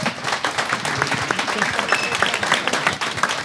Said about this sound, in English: We are out of time. Could I get a round of applause for my great guests?